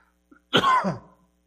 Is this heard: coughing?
yes